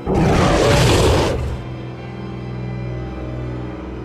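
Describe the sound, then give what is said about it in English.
A loud, rough roar bursts out suddenly and holds for over a second, then drops away into a lower, steady droning rumble that lingers to the end. “And it's followed momentarily by a loud roar.”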